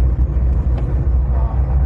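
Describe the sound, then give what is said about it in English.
A small East German Trabant car engine drones steadily in modern traffic, a low continuous rumble with road noise filling the background, fairly loud throughout. “The Trabant car - East German icon”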